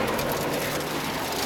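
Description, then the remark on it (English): Steady rain falls at night on an empty road in foggy darkness in northeast Georgia, while a car drives with headlights on: a dense, even hiss of drops with a faint low hum beneath it. No voices, and the sound stays constant for the whole short stretch. “Got back on the empty road, my headlights slicing through the rain and foggy darkness on either side.”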